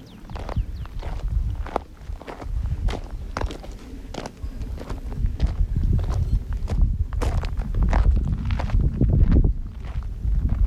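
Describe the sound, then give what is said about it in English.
Many goat hooves clop and tap on a hard road in a quick, irregular patter as the goats block the middle of the road, with a steady low rumble of wind or movement underneath and no talking. The goats all have big horns. “Goats that are blocking the road. They're right in the middle of it.”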